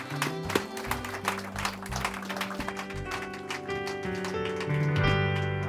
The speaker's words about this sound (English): Póngase de pie. If you'd please stand. ¿Cuánto le pueden dar un aplauso al Señor? How many can give the Lord a round of applause?